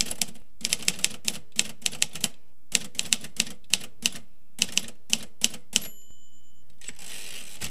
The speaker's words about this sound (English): You press the buttons in rapid succession, which caused little hammers with letters on the ends of them to strike an ink ribbon, which in turn impressed letters and numbers onto a sheet of paper.